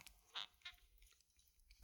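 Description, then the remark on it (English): A cork stopper pulls free of a fresh bottle of spirit with a sharp, loud pop, after a couple of soft scraping handling sounds and a short quiet pause. “Now, let's see if we get a pop.”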